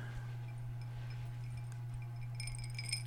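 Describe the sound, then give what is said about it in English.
Ice cubes are jiggled in a cup right at the microphone, a short burst of light, glassy clinks near the end, fairly quiet over a steady low electrical hum. “You jiggled your ice cubes right in the mic so everybody knows.”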